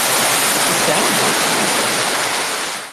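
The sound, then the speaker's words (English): A rain sound effect played from a Rodecaster: a loud, dense, steady hiss of heavy downpour like a thunderstorm that holds constant for about three seconds with no distinct thunder claps, then tapers slightly at the end. “Was that applause or rain? What was that supposed to be? It was like a thunderstorm.”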